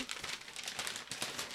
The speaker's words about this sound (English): making more paper rustling sounds.